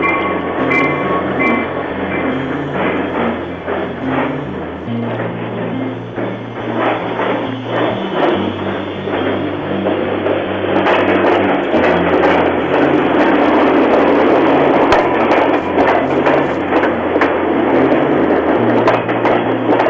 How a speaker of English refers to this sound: There's a train.